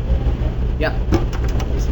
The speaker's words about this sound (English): Sorry, it's a little hard to hear in here with this stupid air conditioning.